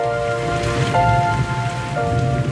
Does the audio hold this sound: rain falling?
yes